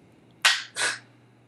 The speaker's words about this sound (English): Is that you clapping